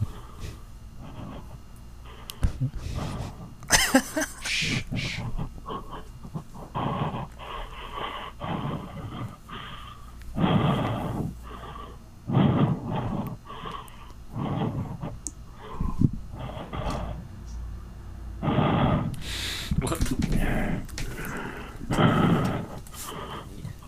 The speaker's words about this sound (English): Is this someone calling? It's you breathing. What? That's not me. This is someone calling.